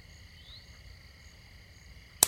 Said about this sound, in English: A mosquito? Yeah. They woke me up about an hour ago.